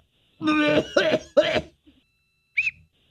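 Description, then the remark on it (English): Three harsh, strained coughs in quick succession, raspy and voiced, then a short pause and one brief cough-like burst carrying a thin, high whistling squeak, as a person coughs up a whistle after doing the Heimlich maneuver on themselves. “Oh, I just did the Heimlich on myself and... this is really I coughed weird.”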